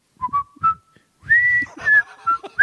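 A whistled tune from the whistling Andy Griffith trash can statue in Pilot Mountain, North Carolina, opening with a few short, separate notes, then flowing into a longer melodic phrase that glides between pitches. It is clear and fairly loud, with no talking.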